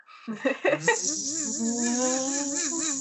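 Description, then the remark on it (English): A voice imitates the whirring of a wind-up torch: a few quick revving bursts, then a steady buzzing drone with a slightly wavering, gradually rising pitch, fairly loud and alone. “Like the casting time, you just hear the faint sound of, like a wind up torch.”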